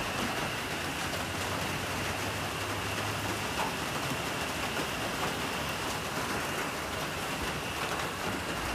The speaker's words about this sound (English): Hey, I was gonna sit outside and do a recording because it's raining and it sounds really nice and the house has a tin roof. But listen to how loud it is between the peepers and the rain.